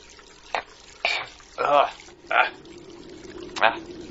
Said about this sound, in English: Take a drink of that vodka dripping from the rock.